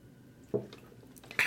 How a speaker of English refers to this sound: Had to get another drink. I got to get to the bottom of this gallon before I get off the podcast. So you hear me drinking. I'm drinking water. Not sparkling, but just water. Regular water.